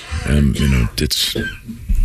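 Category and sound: human body sound, coughing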